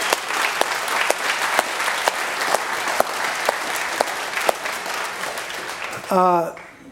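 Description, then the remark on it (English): A church audience applauds the Lord with steady, dense clapping from many hands for about six seconds, fairly loud, before a voice begins speaking as the applause dies away. “So you guys are nuts, and you should applaud the Lord in you.”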